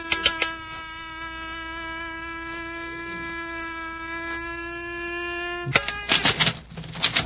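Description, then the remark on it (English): An electronic door lock's combination being dialed by turning the settings of a ring: a steady, buzzing electronic hum drones for several seconds after a few quick clicks, then cuts off into a burst of sharp clicks and rattles as the door opens. “It's an electronic lock on the door. This ring may solve the combination. I'll try it. A few turns of the settings ought to tell the story.”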